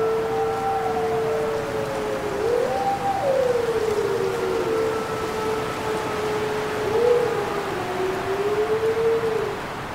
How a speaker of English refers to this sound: A lone wolf calls out among the pines, and a large pack of timber wolves and their pups chime in. Timber wolves are large, a subspecies of the gray wolf, and live in packs of up to 20 members.